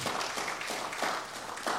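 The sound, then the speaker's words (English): An audience claps their hands during a morning sermon in a dense, steady wash of applause that holds at an even, moderate level throughout, with no voices standing out. “Y'all give him a hand clap this morning.”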